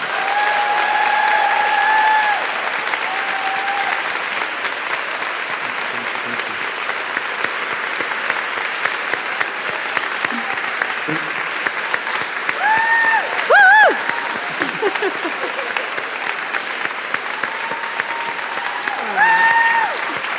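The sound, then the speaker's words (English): A crowd applauds steadily for about twenty seconds, a dense, even wash of clapping with a few brief whistles and cheers rising above it, as an audience at an evening event gives a round of applause for Mo Gawdat. “Please would you join me in a round of applause for the magnificent Mo Gawdat.”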